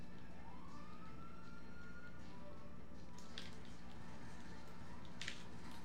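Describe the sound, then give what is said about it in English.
In a video game, a police siren wails upward in one long rising sweep as a police car arrives, then fades, over a steady low rumble, with a couple of sharp bursts of noise toward the end. “Here comes the cop.”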